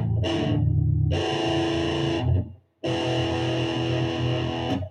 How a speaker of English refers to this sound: I'm going to turn distortion on for this one because this is more of a rock song. Right, let's just see how that sounds.